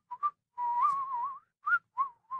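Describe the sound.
A person whistles a short tune: two quick notes, a long wavering held phrase, then three brief clipped notes. The whistling is clear and alone, with no talking.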